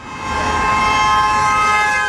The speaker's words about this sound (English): You hear the honks.